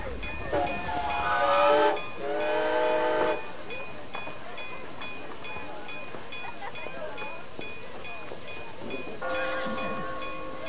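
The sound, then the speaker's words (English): A steam train's whistle sounds in two long, loud, harmonic blasts, then falls silent over a steady hiss and rumble before a third, softer blast rises at the end. “So that would put it near train tracks.”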